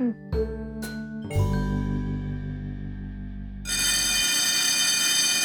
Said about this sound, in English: Ooh, I think the timer on my oven went off?